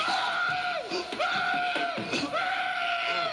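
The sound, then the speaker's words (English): Loud, shrill screaming from the wrestler Zeus as he holds up an opponent in a wrestling match with Hogan, a piercing high-pitched wail that breaks off briefly and starts again about three times in quick succession, strained. “Remember when he was like, holding the brother up, he screamed. Oh, like yeah. the most high-pitched scream.”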